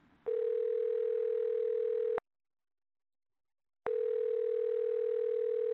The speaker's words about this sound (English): I've got his number on speed dial, so I just press the Woody button now.